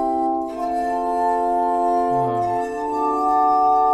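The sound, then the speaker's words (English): A spinning, water-wetted glass instrument, kept spinning and played at both ends, sings with sustained, pure ringing tones, several steady pitches layered together, swelling gently with a brief lower tone sliding in midway, no voices present. “Isn't that so beautiful? The sound of that instrument.”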